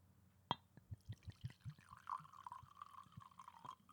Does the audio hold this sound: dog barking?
no